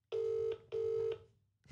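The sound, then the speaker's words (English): Two steady electronic ringback tones from an outgoing phone call, the phone held near the microphone, each tone lasting about half a second with a short gap between, fairly loud, with no one speaking. “We're ringing.”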